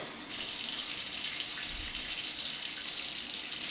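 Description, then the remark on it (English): Shower water starts abruptly and runs in a steady, hissing spray that stays constant throughout, with no voices. “A lot of good thoughts come to you in the shower.”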